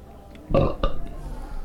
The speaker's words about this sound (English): Two is, was that a belch?